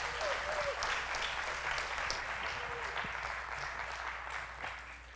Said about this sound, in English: I don't know if I've, got like a clap before I've preached before, so I'll take it.